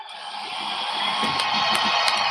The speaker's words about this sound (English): Are you cheering as well?